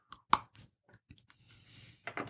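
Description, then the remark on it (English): A sharp crisp snap of a bite into a Theo dark chocolate bar, then a few irregular crunchy chewing sounds with quiet mouth noises between, ending in a louder burst of chewing. “Yeah, so let's take a little bite of this, the Theo.”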